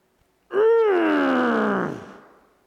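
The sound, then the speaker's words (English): A single loud, drawn-out straining groan made under great effort, lasting over a second, pitch lifting briefly then sagging downward before it trails off, voiced alone with no talk around it. “So it's the sounds you make under great effort.”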